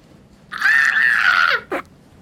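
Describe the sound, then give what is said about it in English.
A person lets out a loud, sustained, high-pitched screech imitating an owl's battle cry, lasting about a second, followed by a short sharp yelp at the end. “It's her owl battle cry.”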